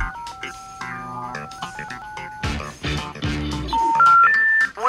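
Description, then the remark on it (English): Electronic telephone tones play as a venue's phone number is dialed to get its address, with brief bursts of voices mixed in, ending in three rising beeps in quick succession. “Can you call the phone number that's on there?”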